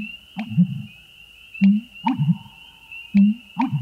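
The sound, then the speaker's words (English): A marsh bird in the heron family gives a deep, hollow booming call, low gulping notes repeated in three rhythmic bursts with a soft click at the start of each, alone without talk. “One fine spring morning, as you walk near a marsh, you are stopped in your tracks by a loud, reverberating call with a cadence that seems lifted from an old cartoon soundtrack.”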